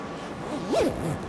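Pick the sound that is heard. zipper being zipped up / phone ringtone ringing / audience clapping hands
zipper being zipped up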